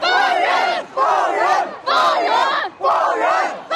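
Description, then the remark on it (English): A large crowd applauds and chants "Free the people" together in loud, rhythmic unison, four forceful shouted phrases with brief pauses between them, sounding energetic. “People spontaneously applauded her for speaking and chanted, "Free the people."”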